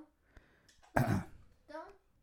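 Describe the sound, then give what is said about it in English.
A single harsh, loud cough bursts out in the middle, framed by soft, brief vocal sounds before and a short voiced murmur after. “You weren't really coughing up blood or anything, right?”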